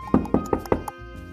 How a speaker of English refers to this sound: And he knocks on his door.